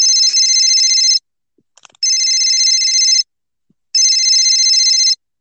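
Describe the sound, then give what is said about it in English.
A telephone rings three times in steady bursts of about a second each, separated by short silences, loud and clear with no talking over it, like a ringback tone on an outgoing call. “Ooh, that's a much more pleasant sounding ring.”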